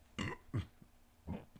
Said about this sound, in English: We're gonna burp.